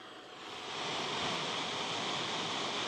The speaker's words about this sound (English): So that's brown noise.